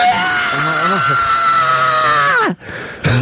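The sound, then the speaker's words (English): An adult voice imitates the tantrum scream of a child whose pizza was taken away: one loud, sustained, strained wail lasting a couple of seconds, its pitch sliding down at the end before a brief gap and another burst. “Sorry to scream.”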